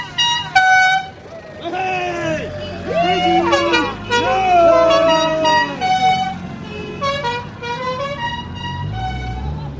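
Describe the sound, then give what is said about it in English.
A new car horn honks repeatedly in short, loud blasts, mixed with excited voices and shouting around it, as the car sets off for Navan. “We give our new horn for today as well.”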